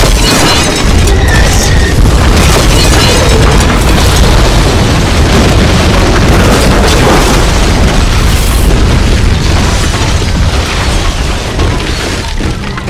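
A gas truck slams into a diner and explodes: a loud, sustained explosion roars for about thirteen seconds, a dense rumbling blast with crashing, shattering debris and bursts layered through it, holding steady before easing slightly at the end.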